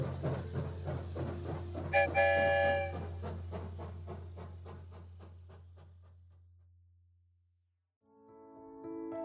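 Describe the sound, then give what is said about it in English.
A train chugs in a steady, rhythmic beat over a low rumble while its whistle toots once, loudly. The chugging slows and fades away, then a second whistle sounds at the end. “It's me, Birdie, the conductor of the story train.”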